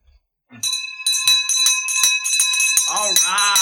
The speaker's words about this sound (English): Got the victory bell.